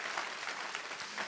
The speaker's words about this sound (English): Come on, if you believe that at all of our campuses, why don't you clap your hands right now?